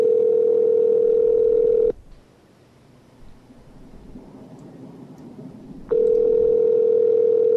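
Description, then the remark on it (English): A telephone line ringing: a steady mid-pitched tone lasts about two seconds, gives way to roughly four seconds of faint line hiss, then the loud tone returns. No one speaks. “It's probably going to be busy now because they're going to be, you know, talking to their on-call police.”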